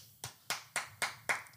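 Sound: hand claps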